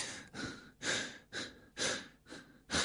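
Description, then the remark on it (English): A man imitates heavy breathing: a run of loud, rhythmic breaths alternating in and out, about six strong huffs over a few seconds with no speech. “you know what heavy breathing is. I didn't need to enact it.”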